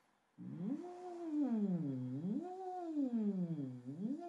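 Someone sings vocal sirens through a straw held between the lips: a muffled, buzzy hum that glides smoothly up and down in pitch in slow rolling waves, steady and fairly loud, with no talking.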